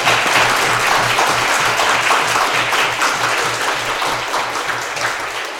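A crowd applauds steadily, dense overlapping claps forming a loud, continuous wash of noise that holds for several seconds and then tapers slightly toward the end.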